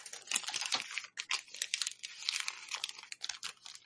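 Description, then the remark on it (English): Continuous crisp rustling of paper, fairly loud, with dense crinkly bursts and brief pauses, like pages being handled and turned. No voices are heard. “Just the sound of a page turning or rustling, paper rustling.”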